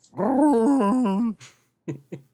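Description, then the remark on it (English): A dog called Wolf, kept in a stable and drugged, whimpers in a long, wavering whine that rises and falls in pitch, followed by a breathy huff and a few short, low grumbling whimpers. “into the stable where they've been keeping the furball”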